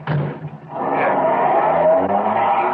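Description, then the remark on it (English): A car engine turns over and revs, then settles into a steady loud rumble as the vehicle pulls away, with no voices. “Here's the car. Let's go. Ben, you drive.”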